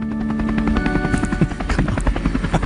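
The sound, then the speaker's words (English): A helicopter's thudding rotor chop with a steady engine whine, loud and continuous, the rhythmic beating pulsing throughout as it draws near a funeral. It carries David Bairton, with a camera crew, to his own funeral. “And not only from the helicopter emerges the man himself, David Bairton, accompanied with a camera crew at his own funeral.”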